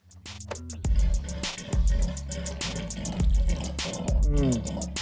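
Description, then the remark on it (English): A voice imitates a clogged faucet with sputtering, gurgling bursts in a fast, uneven rhythm, punctuated by heavier low thumps every second or so, loud. “A clogged faucet.”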